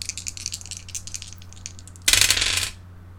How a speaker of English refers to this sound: Let's roll some good dice.